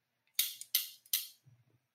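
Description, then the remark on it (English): Three crisp metallic clacks of grill tongs snapping together, evenly spaced, each with a short bright ring, followed by a faint low rumble. “I want to be known as the guys that kind of started this trend of clicking grill tongs together.”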